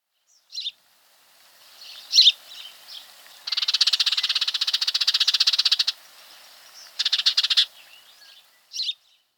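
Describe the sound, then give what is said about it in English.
A few sharp, toneless songbird cheeps are spaced apart, broken by a long, rapid dry rattle and a shorter second rattle, then a final cheep. No talking. “A classic cheep, cheep, cheep with a toneless quality to them. They also have a rattle, which you can hear at the end of this next track.”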